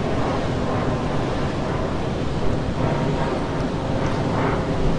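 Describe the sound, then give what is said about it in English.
Heavy rain pours down steadily, a dense, continuous hiss and patter with no pauses and no voices, holding an even loudness from start to finish. “And what I want to invite you to do today, it's raining, is like a lot.”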